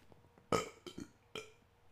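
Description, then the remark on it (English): A loud burp bursts out in a few rough pulses, trailed by a shorter belch-like gulp, over a quiet background with no talking. “Hold on, I got a burp.”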